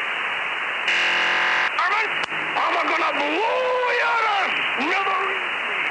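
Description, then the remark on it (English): Steady radio static hisses for about a second, then a harsh, buzzy digital data burst cuts in briefly, followed by a distorted, band-limited voice clip of Yosemite Sam speaking over the static. “So first you'll hear static, then you'll hear the data burst, then you'll hear Yosemite Sam.”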